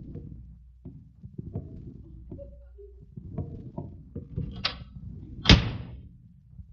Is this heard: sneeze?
no